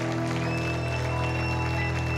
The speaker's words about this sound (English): Well, can you give God one more big hand clap of praise? Just make some noise for Jesus.